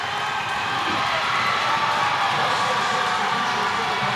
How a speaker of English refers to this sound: Now you hear the Piedmont crowd going a little crazy.